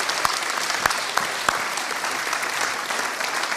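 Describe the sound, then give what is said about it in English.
A crowd applauds steadily, dense clapping filling the whole stretch at an even loudness, with a few sharper individual claps standing out early on. “And why don't you give them a huge round of applause?”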